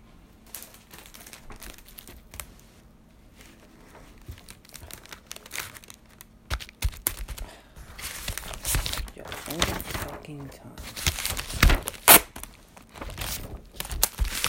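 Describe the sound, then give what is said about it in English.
Adhesive tape being pulled and torn, with repeated crinkly rips and crackles growing louder and busier toward the end, with some faint muttering in between. “Fucking tape.”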